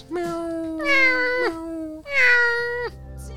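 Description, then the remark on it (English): A cat meows loudly, two long, drawn-out wailing calls back to back, each rising and then sliding down at the end, with no one talking. “She's a cat.”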